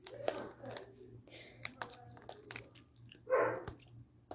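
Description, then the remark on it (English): A single short bark from a pet dog named Luna sounds in the background, very faint, amid a steady patter of computer keyboard typing clicks and a low hum. “Now's my doggie. Don't know if you heard her. They probably did. Very barely.”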